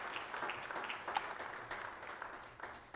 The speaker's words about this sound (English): If you're glad to be in the house of the Lord, give God a hand clap of praise this morning in His presence. Praise the Lord.